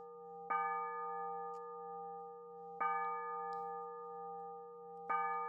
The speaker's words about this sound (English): Well, see, I had those church bells there to have like, oh, this is the break time, and then afterwards we come back and talk.